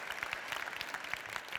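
An audience claps steadily, dozens of overlapping hand claps merging into a dense, even patter at moderate volume, with no voices heard.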